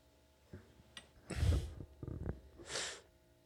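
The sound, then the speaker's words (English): A wet, snuffly sniffle bursts out loudly, followed by a few small nasal catches and then a shorter, airy sniff. No one speaks. “Just had to add a sniffle into the dead space.”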